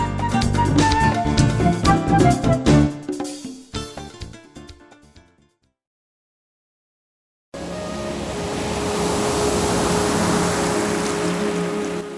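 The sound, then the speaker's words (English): A short musical passage fades to silence, then a steady rush of ocean waves comes in, loud and continuous with a low underlying hum, and no voices. “luscious ocean waves, peaceful music, inviting us to spend time together in the quiet.”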